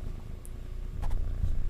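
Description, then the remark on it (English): A cat purrs right up against the microphone, a low, steady rumbling throb that grows slightly louder partway through, with a couple of faint scratchy brushes over it. “This is the cat's ASMR. Start purring, you fucking pussy.”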